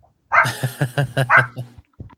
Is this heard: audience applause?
no